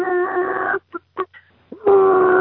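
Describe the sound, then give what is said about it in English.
A person's voice imitates a chicken clucking as it walks around in a yard: two drawn-out nasal clucks bracket a few short, choppy bursts, fairly loud, with no other speech. “You ever heard a chicken when he walks around in the yard?”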